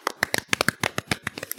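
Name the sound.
golf clap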